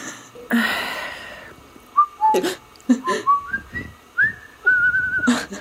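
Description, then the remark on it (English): Someone whistles a short melody of clear notes stepping between pitches, some held, with breathy noise bursts in between. It's moderately loud, with no talking. “So you knew the whistling.”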